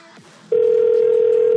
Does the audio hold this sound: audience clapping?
no